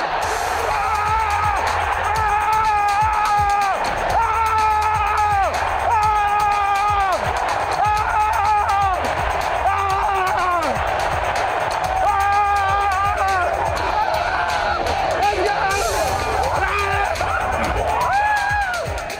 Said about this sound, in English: So much yelling, so much screaming, and deservingly so, the Jaguars have finally won a game, and it is Monday morning drive time.